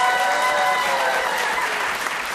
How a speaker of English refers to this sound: Applause for Stallone impression.